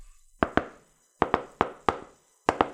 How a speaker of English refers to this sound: coming up to the door, Dimitri does the knock for the Caligalas family